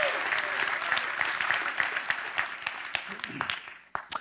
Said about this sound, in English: So why don't you guys just give a big round of applause and shout out to those people who are watching online.